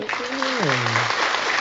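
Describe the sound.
Dense, steady applause sound effect, loud and continuous throughout, with a single voice-like cheer sliding downward in pitch early on, played to celebrate Paul George's 33-point debut back from injury against the Pelicans.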